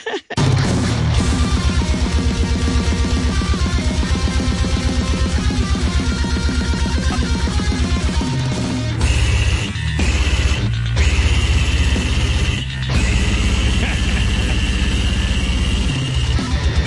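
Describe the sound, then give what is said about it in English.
Loud, dense death-metal take on Jingle Bells: pounding drums and distorted guitars churn continuously, with high squealing vocals and no actual lyrics, and brief breaks in the barrage. “It's Jingle Bells, except there are no lyrics, and the singer just squeals like a pig.”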